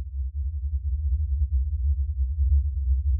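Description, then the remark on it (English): A sonification of the sun's activity, which comes from fluid at the sun's surface convecting up, erupting and flowing: a steady, deep low-pitched hum with a slow warbling, pulsing texture, sustained throughout at an even loudness with no voices. “The sun itself actually makes noise.”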